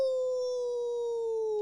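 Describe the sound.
A person imitates a wolf howl for use in Hockey Wolf commercials, holding one steady, slightly falling note for under two seconds, loud, with no other sounds around it.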